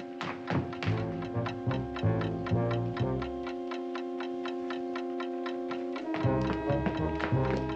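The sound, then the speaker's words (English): Rapid, steady ticking of a time bomb in the handle of an umbrella left in an umbrella stand, loud, runs throughout over sustained, tense orchestral chords, with heavier low thumps at the start and end. No one speaks. “The umbrella handle is ticking. Holy time bomb.”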